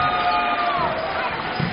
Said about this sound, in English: Got a nice round of applause by the fans over here.